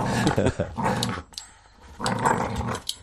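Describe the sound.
A dog growls in two rough, throaty bursts separated by a short pause, fairly loud, as if worrying at something with its mouth.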